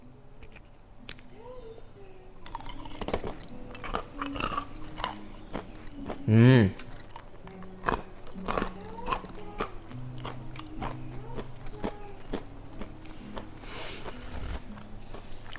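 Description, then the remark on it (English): Crunching as a hard, brittle candied macadamia cluster, caramel-coated with sea salt, is broken, bitten and chewed, sharp cracks repeating irregularly throughout, with a brief hum of approval from a voice partway through. “Do you hear how crunchy that is?”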